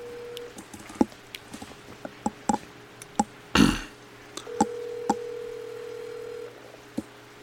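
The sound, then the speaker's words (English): A phone call being placed to book a fishing trip: scattered clicks like keypresses, then a steady ringing tone that drones for a couple of seconds, with a brief rustling burst in between. No one speaks. “We're doing this right on the phone right now.”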